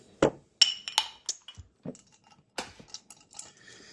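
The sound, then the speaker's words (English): Ice cubes clink into a glass of whisky in a quick series of sharp, bright taps, a few louder knocks followed by lighter rattles, with no talking. “So we try it with an ice cube. Icing it up, baby.”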